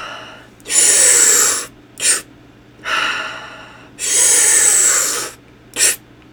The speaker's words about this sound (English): So we're going to inhale through the mouth and a nice expansive one in through the belly. The belly's going to go outwards like a water balloon. So big belly, and then one more and then out.